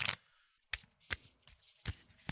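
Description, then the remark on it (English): Playing cards being shuffled, heard as a series of quick crisp riffling bursts at irregular intervals, fairly quiet, with no talking. “Are you ready to shuffle up?”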